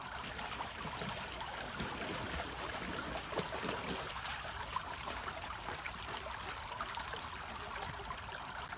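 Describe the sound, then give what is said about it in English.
A gentle stream trickles and babbles steadily throughout, with soft continuous splashing and small bright gurgles, no voices present. “The water, the sound, it's affirming.”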